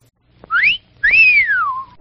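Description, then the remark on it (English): A loud human whistle in two parts: a short rising note, then a longer tone that swoops up and glides slowly down, like an admiring wolf whistle. “The hot dogs at our concession stand do rate an appreciative whistle.”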